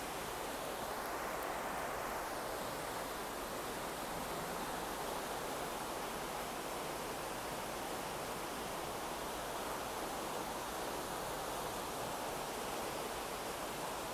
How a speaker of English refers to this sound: Always listening to the river, the flow, the movement. Let the sound of the river carry you away.